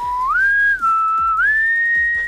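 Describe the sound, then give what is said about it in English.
A person whistles a slow, Western-style movie theme, loud: long held notes joined by swooping upward slides, with a few soft low thumps underneath and no talking. “like that Western whistle that they do.”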